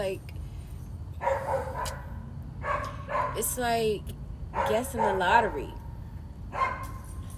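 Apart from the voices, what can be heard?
dog barking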